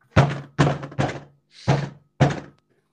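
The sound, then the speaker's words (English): Five heavy, loud thumps on a desk, struck in an uneven rhythm with short pauses between blows, each with a dull low-end boom. “Do you guys want to hear what it'd sound like if I was banging on my desk right now?”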